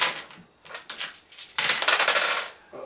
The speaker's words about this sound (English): He's rolling dice. That's bad, yeah. Generally when the GM's rolling dice...